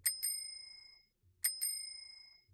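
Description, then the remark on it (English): A bicycle bell rings twice in quick double dings, then repeats the pair about a second and a half later, each chime bright and metallic with a long shimmering decay. “So where's the bike bell?”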